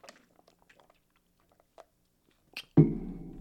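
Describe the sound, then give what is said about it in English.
Quiet wet mouth sounds of someone sipping water: soft clicks and slurps scattered over a few seconds, then a sudden louder, sustained burst of sound at the end. “Take a sip of water.”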